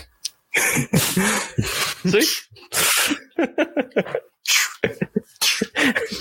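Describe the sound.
A voice imitates the Star Trek sliding door with a short, breathy hissing whoosh, surrounded by bursts of chatter and laughter from several people.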